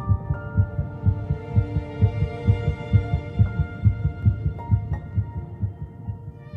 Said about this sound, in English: At 3 weeks and 1 day, just 22 days after fertilization, … heartbeat can be detected.